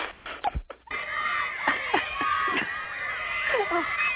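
A concert audience screams without pause, a dense wall of shrill, wavering young voices on a muffled, lo-fi recording. Brief thuds open it before the continuous screaming takes over.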